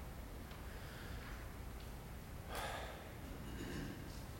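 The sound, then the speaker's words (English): Soft breath sounds: a sharper airy inhale about midway, followed later by a gentler, longer exhale, with no talking. “You ever stop to think about simply the sound of our breathing is the name of God?”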